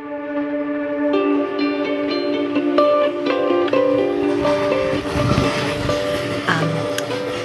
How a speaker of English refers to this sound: Now on the Amtrak from Penn Station to Albany, heading into some pretty hardcore unknown.